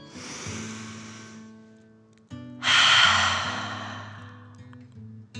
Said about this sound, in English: Remember to breathe in through your nose, filling up your chest and belly, and then out, pretending you are breathing fire. Deep breath in and out.